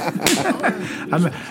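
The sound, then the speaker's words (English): A sharp, loud slap or whip crack snaps out near the start, followed by short voiced groans and chuckling, with another fainter smack-like hit later on. “And whenever Trump has a bad day, he just Mike Pence just lets absolutely him whip him.”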